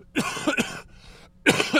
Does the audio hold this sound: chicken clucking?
no